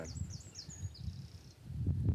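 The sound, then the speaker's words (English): A wren sings faintly in a young woodland, a quick run of high, thin trilling notes lasting about a second and a half over a low outdoor rumble. “A wren.”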